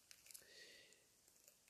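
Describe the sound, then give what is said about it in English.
A small candy wrapper is torn open, a brief crinkling rip with a few sharp paper crackles, quiet and with no voices. “I tore this little candy paper right here because it's already done.”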